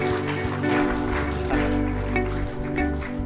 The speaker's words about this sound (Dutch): Kom maar, laten we hem een geweldig applaus geven. Come on, let's give him a great hand.